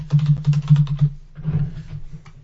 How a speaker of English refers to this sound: I get nervous when you type.